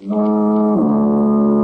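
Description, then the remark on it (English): A loud, deep foghorn blast sounds alone, holding a steady, buzzy tone that dips slightly in pitch partway through and then sustains to the end. “That's like the Life Boy foghorn.”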